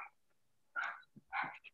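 A dog barks in a couple of short, sharp bursts, with a brief gap between them and quiet before and after. No one is talking.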